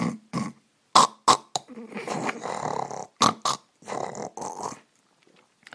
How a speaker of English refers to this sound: I snore. I didn't realize that before my wife recorded it by her iPhone lately. My snoring was surprisingly loud. It goes like this.